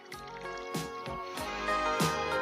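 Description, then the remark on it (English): Vodka is poured into a glass of whiskey in a quiet, steady stream, with a few soft splashy glugs and drips over a couple of seconds and no voices. “Here, put some vodka in it. There's vodka in it now.”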